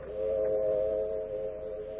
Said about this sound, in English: Tonight's FBI file opens in a railroad cut in the hill country of a New England state. It is late at night, and the whistle of a southbound freight is heard in the distance.